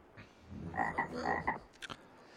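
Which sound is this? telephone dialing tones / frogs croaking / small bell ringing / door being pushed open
frogs croaking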